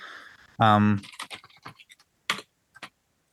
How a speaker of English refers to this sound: I love a good keyboard sound.